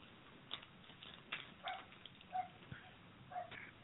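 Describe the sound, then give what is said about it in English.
A dog barks about five times at irregular intervals, short sharp yaps that sound faint, with no talking over them. “The dog.”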